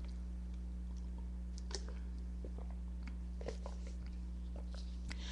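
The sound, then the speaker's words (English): Someone takes a sip of water: a few small wet mouth clicks and a gulp, scattered over several seconds above a steady low electrical hum, with no talking. “And, I just had to take a sip of water.”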